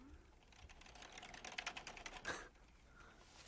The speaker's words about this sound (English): So you added in all the sound effects later of her typing constantly, right? Yeah, so you just tried to exaggerate it a little bit.